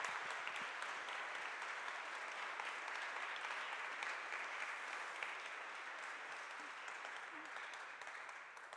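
A crowd claps steadily for several seconds, a dense, even patter of many hands that holds at a strong level before easing slightly near the end.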